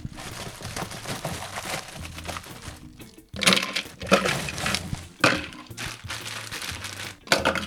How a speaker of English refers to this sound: And then, of course, we've got half a cup of ice as well to just go into the blender. Basically, we just take all those ingredients and we just chuck them into the blender, and then we'll blend until it's nice and smooth.